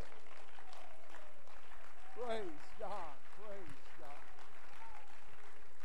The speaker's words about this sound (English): Come on, clap your hands and let's give praise.